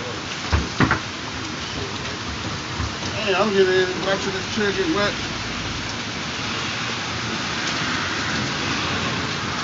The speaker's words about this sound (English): We in the rain. Live in the rain and the storm.